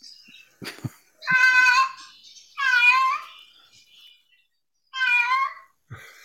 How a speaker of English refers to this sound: Are you distracted by my kitty?